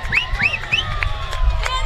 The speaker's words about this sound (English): Seagull fans on their feet here. A socially distanced capacity crowd, we'll call it here, but a nice crowd here of folks. They're loud, that's for sure.